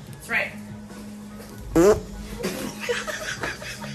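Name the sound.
fart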